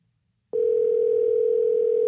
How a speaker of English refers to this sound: We're calling. I hope he answers. Watch him not.